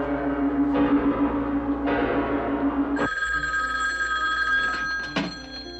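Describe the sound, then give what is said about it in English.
A telephone rings loudly in repeated bursts, the ringing shifting into a longer sustained tone before cutting off near the end. No one speaks. “How'd you get this phone number?”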